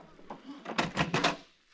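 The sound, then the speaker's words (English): A front door is opened to answer the doorbell: a brief cluster of clattering latch and hinge clunks lasting under a second, with faint background noise before and after and no talking. “This time I'm answering the door.”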